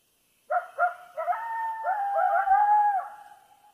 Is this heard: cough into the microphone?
no